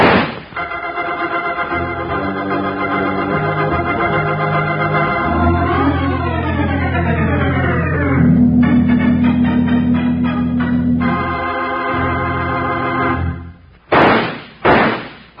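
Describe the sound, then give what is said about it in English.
A sustained, swelling musical passage cuts off, followed by three quick, loud, sharp gunshots near the end, each a short explosive crack with a brief decay. “those three gunshots are just to remind you that Kellogg's new cutout masks are in 3D.”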